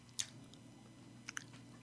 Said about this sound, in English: No, I swallowed it a minute ago. I've just been crunching.